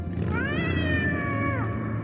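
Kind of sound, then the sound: animal, cat meowing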